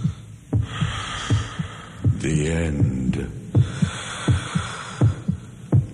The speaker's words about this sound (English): And the credits roll over a heartbeat and heavy breathing, and someone saying the end.